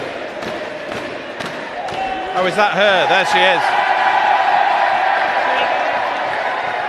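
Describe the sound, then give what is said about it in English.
A crowd at a Liz Truss rally breaks into a loud, sustained roar of cheering that swells and holds, following a few sharp thumps and a short stretch of talking over the noise. “OK, this is the Liz Truss roar we can hear behind.”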